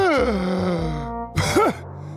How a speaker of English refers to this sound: After being rescued, Speedy Donkey tried to catch his breath and was gasping for air.